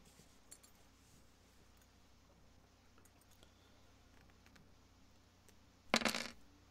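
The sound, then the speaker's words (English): After a quiet stretch, dice are rolled: a short, bright burst of clattering dice rattles and tumbles across a surface for about half a second, fairly loud. “So let me get my my little doomahicker out here so I can roll my dice.”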